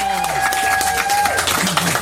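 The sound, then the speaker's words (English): Steady crowd applause for a guest being welcomed back fills the whole stretch, a dense wash of clapping with a held whistle-like tone early on and a voice starting to talk over it near the end. “So make a really give you the big applause”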